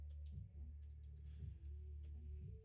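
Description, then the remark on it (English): Quiet, irregular clicks of typing on a computer keyboard, a few scattered keystrokes over a steady low hum, with no voices. “Oops, I'm typing this wrong shit.”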